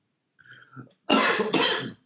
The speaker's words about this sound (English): Oh my God, that made me laugh and cough, man. That is ridiculous.